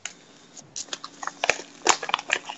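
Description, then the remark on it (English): Someone takes a quiet sip of apple cider mead with vanilla beans and cinnamon from a glass, a short run of small wet slurps and mouth clicks over a couple of seconds, with no talking. “But let's go ahead and take a sip.”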